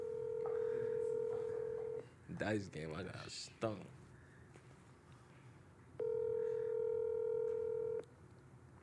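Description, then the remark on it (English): An outgoing phone call rings out: two long, steady ringback tones about two seconds each, separated by a pause in which people talk briefly. “It's cool if you don't pick up because I'm nervous.”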